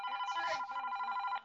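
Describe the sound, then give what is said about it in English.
A mobile phone rings with an incoming call, a bright electronic ringtone of rapid, steady pulses, fairly loud, cutting off abruptly after about a second and a half. “do you need to get your Okay, phone? you know what's funny is Mason is calling me”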